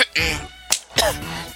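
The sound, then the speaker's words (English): Two sharp coughs about a quarter second apart, preceded by a short voiced, throaty sound, with no speech. “Excuse me, I had to get something for that cough.”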